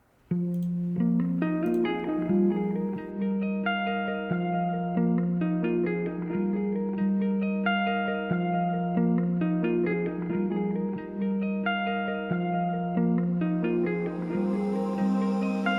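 A rock song's guitar intro plays on its own, a steady low droning note underneath while a melodic line of ringing notes shifts above it at an even, unbroken loudness, with no voices.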